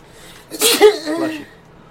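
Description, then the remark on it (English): A single sharp sneeze, a sudden bright burst of breathy noise followed by a short voiced tail, with near silence around it. “Bless you.”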